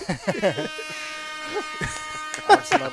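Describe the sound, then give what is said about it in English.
A loud, buzzy air horn blast holds a steady, brassy tone for a few seconds, with voices talking over its start and end. “I love that air horn.”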